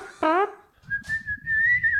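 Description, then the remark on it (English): Someone whistles a tune in long, held notes that drift gently in pitch, fairly close and clear. A short vocal sound comes first, and murmuring voices continue quietly underneath. “Yeah, it has a little pizzazz. Like, as a whistle.”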